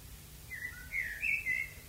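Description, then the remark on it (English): A bird sings a few short, bright whistled phrases, rising and falling, fairly faint over a low steady background hum, with no one talking. “Oh, you hear that? No, everyday mind, common sense is what birds are singing.”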